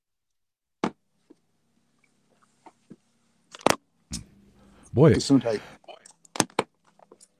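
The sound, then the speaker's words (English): A radio host on air lets out two sudden, explosive sneezes a few seconds apart, with a short spoken exclamation and a few faint clicks and breaths in between. “I think I'm going to have to sneeze.”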